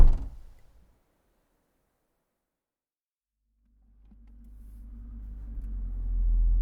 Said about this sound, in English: Our driver politely ignores the question and opens the rear door of the Range Rover.